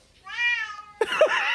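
A cat meowing along to a song lets out a long, drawn-out meow, then breaks into a louder, rougher yowl straight after, clear with no talking.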